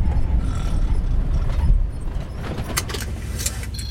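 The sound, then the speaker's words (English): A truck's low engine rumble fades as it slows, followed by a few sharp mechanical creaks and squeaks as it brakes to a halt. No voices. “Stop the damn truck, old man.”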